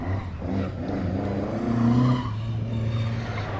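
An air-cooled car engine chugs and revs, its throaty rumble swelling midway as it pulls away, then settling into a steady drone. No one speaks.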